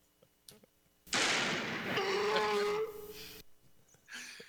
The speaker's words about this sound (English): Fucking horse.